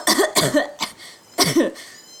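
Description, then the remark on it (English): A voice sputters and coughs in a wet, choking burst: two harsh coughs, a brief gasp, then another spluttering cough, imitating someone swimming up to the surface after wading into marsh water. “Kind of sputters and, like, swims up to the surface.”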